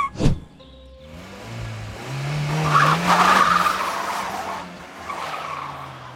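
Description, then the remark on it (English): A car skids with a long, loud tire squeal, rising in pitch and sustained for several seconds, with engine noise underneath and a sharp thud at the start, as the car nearly hits a person. “That car almost hit you.”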